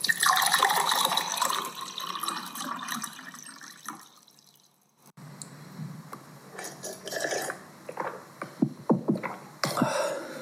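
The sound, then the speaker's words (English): Water splashes and gurgles steadily for a few seconds, as if poured into a cup, then goes quiet before soft sips, small clinks and gulps follow. “Here, drink some water.”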